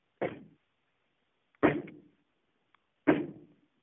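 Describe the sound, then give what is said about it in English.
Three heavy, booming knocks on a door, evenly spaced about a second and a half apart, each one ringing out briefly before fading into silence. “Ah, we have knocked at the portal to a dark place, wherein thy weary body must rest for a time, and wherein its vigor shall be restored.”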